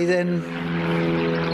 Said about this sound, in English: Wait for the plane to go away.